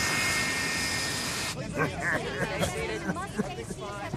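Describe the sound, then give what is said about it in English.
A loud, steady roar of an airplane engine with a high whine fills the opening moments of a played video clip, then cuts away to voices talking over a softer background rumble. “Astonishingly, Tom Hanks was also on the plane. Here's the video.”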